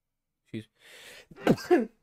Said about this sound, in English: Excuse me. Ow. I forget what I was going to say. I just sneezed it right out of my brain.